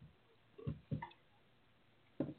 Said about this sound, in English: Yeah, have a drink of water real quick.